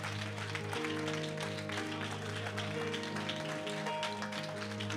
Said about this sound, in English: And if you're thankful for the word of the Lord, clap your hands one more time before you're seated and give him praise. Hallelujah to God. Come on, clap your hands and give him praise. Hallelujah.